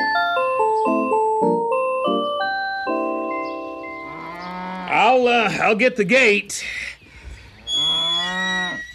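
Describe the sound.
Cows moo loudly, a few long, wavering calls in a row, with another moo near the end. A person speaks briefly, and a tinkling, chime-like melody plays beforehand.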